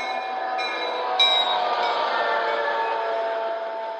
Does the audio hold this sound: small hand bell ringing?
no